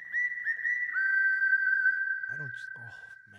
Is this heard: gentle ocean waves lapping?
no